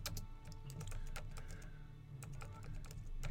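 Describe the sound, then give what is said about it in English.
Rapid, uneven clicking of keys on a computer keyboard, fairly loud, with bursts of keystrokes and brief pauses over a low background hum. No one speaks. “See, it's your season of harvest, so I'm typing it down.”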